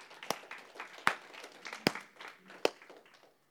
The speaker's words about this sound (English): And if we're going to clap, let's clap.